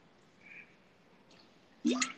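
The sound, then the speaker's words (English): A person takes a drink of water: quiet room tone, then one wet gulp with a short swallowing sound near the end. No one speaks. “Drinking water.”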